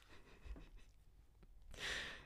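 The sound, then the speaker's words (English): A voice imitates loud snoring for a character lying on a bed in a tabletop role-playing game scene: rough, breathy inhales build up and end in a strong, hissing exhale, with no other talking. “We pan up even further to dirt and soil and grass, and we pan up and we see a bed with Xander lying on it, snoring very loudly.”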